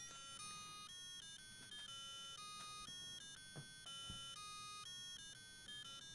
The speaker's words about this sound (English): You know what? I don't mute my timer.